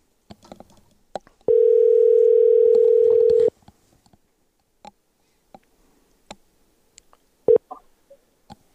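A steady telephone dial tone hums for about two seconds amid scattered soft clicks of handling as a phone call is placed, followed later by a brief beep, clear with no one talking.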